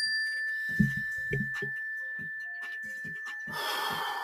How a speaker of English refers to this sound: When you hear the mindfulness bell, everybody take a slow, deep breath.